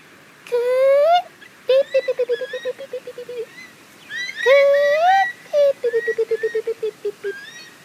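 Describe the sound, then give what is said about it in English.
A voice imitates an eastern curlew call twice: a loud, rising whistled note followed by a rapid run of short, bubbling pulses that slowly fall away, with a brief pause between the two attempts. “Can you make the sound of an eastern curlew? Give it a go with me.”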